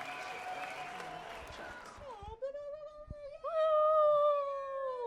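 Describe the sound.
A brief burst of clapping fades out over about two seconds, then gives way to a long, loud, wavering tonal cry like a drawn-out meow or squealing voice.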